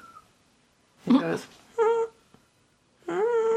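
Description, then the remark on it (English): A dog named Chester whines: a short rough yelp, then two drawn-out, high, wavering whimpers separated by pauses, with no one talking over them. “Is Chester asking for a walk?”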